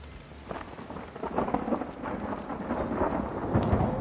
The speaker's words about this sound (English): Oh, finally, it's raining. My favorite weather. Me too.